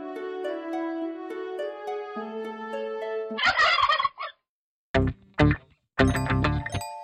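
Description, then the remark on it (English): Ringing, bell-like tones give way to a loud turkey gobble, a rapid warbling burst, followed by a few shorter gobbling bursts separated by brief silences. “The holiday season is upon us, so let us talk turkey. The bird.”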